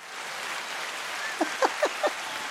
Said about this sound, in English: Wait, I'm going to give myself some applause. Hang on. Yeah, give it to yourself.